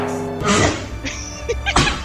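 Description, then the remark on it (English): A fart, the seventh in a counted series: a low buzzing rasp that breaks into several sputtering, crackly bursts over about two seconds, fairly loud, with no talking. “Fart number seven.”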